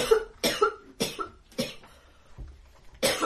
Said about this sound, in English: Oh dear, cue a light cough.